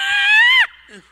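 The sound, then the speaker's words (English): Comedian Jim Breuer, doing an animal impression, imitates a crow with one loud, harsh, drawn-out nasal caw that holds steady and then cuts off abruptly, followed by a faint, lower, wavering trail of voice. “He's doing an impression of a crow, by the way, I think.”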